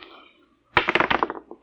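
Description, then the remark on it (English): Dice rolled onto a hard surface in a try for a 7: a sudden clatter of quick, sharp clicks and knocks that bounce and tumble, then thin out and fade within about a second, following a brief faint murmur. “do you know what the odds are against my rolling a 7?”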